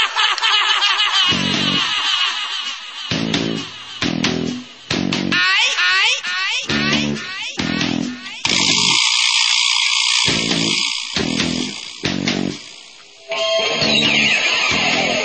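A loud heavy metal rock song plays, with heavily distorted electric guitar chugging through a stop-start riff and pounding drums, then a sustained, screaming guitar section without vocals.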